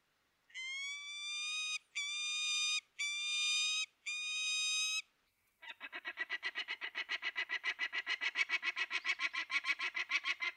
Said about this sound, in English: And that is a peregrine falcon.